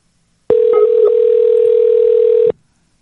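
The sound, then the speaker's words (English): A single steady ringing tone from an outgoing phone call, lasting about two seconds at a constant pitch and loud, with silence before and after. “No, it's ringing.”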